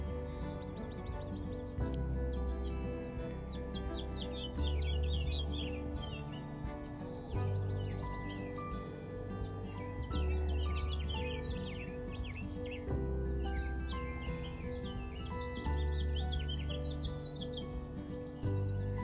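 Wild birds sing outdoors in a steady, overlapping chorus of quick chirps and trills, lively throughout, over a constant low background rumble. No one speaks.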